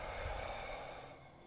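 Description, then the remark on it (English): A deep, steady exhale of breath during a breathing exercise, a breathy rush of air that holds for over a second and fades gently toward the end, with no talking. “One last deep breath.”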